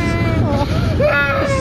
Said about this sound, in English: Okay, so this was audio that you took on the plane ride. On my phone. Either to or from, because you had a crying kid on both legs, right?